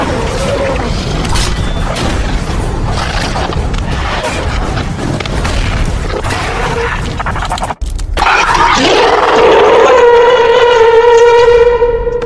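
Loud clattering, crashing noise gives way after a brief gap to the steady, piercing tone of a crab alarm, a single sustained buzzing pitch with bright overtones that blares unbroken until the end; it goes off about every 6 or 7 minutes.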